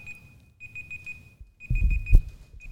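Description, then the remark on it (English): A timer alarm beeps in a steady, rapid electronic pattern, high-pitched and continuous, with some low rumbling handling noise and a brief thump underneath. “You set a timer instead of I'm the stopwatch.”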